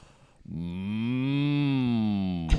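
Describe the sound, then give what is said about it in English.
A single long, loud cow moo, a steady low bellow lasting about two seconds with rich harmonics, with no one speaking over it. “You guys have cows? What? Cows. Yeah, we got cows.”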